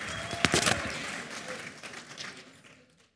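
A short burst of audience applause: many hands clapping in a dense, crackling wash that peaks early, then steadily thins and fades out after about three seconds.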